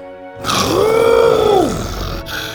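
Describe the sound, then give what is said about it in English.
A voice imitates an excited T-Rex roar: one loud growl lasting over a second that swells upward, holds, then drops away, with no talking around it. “The T-Rex let out an excited roar.”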